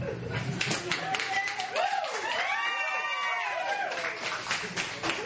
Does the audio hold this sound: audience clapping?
yes